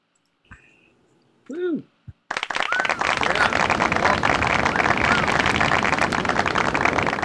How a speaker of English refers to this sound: Did you hear your applause? I did. I heard the applause.